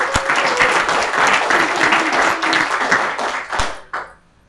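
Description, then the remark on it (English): An audience applauds, a steady dense patter of many hands clapping at once, loud, holding for several seconds before quickly tapering off to near silence. “So give them a round of applause as we start.”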